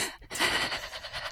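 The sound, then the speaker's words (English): A voice imitates an actor's anxious, scared breathing from a movie: a quick sharp inhale followed by a long, airy, trembling breath, fairly loud, with no words spoken. “There's a lot of him breathing.”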